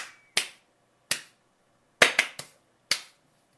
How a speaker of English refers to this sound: Here's me slapping fives in the front row.